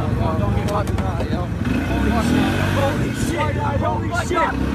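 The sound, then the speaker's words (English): A car engine in a played video rumbles steadily, a continuous low drone that stays loud throughout, with people's voices talking over it. “You're in a car.”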